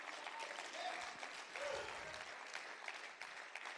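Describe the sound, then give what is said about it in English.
An audience claps hands to the Lord in a sustained, dense burst of applause, many people clapping at once, with a faint murmur of voices underneath. “Clap your hands to the Lord if you don't mind.”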